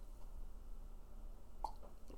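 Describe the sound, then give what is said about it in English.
A quiet, low background hum, then a single brief slurping sip of hot tea and a soft gulp just after. No one speaks. “I'll take a sip on that. Join me with my tea.”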